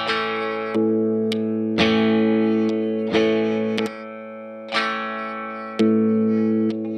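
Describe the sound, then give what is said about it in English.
A thin, hollow-sounding electric guitar on its rhythm pickup setting, with an out-of-phase tone, plays a series of ringing chords, struck roughly once a second and left to sustain, fairly loud with no voices. “There's some kind of phase thing going on.”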